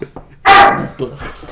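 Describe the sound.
A husky named Atlas gives one loud, sharp bark, its rough howling edge trailing off, with people talking faintly before and after.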